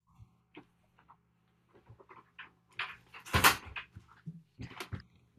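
door being closed

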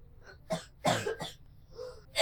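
coughing

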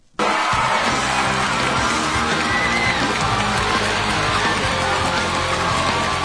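studio audience cheering

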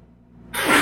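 a person sneezing

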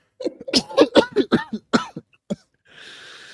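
cough

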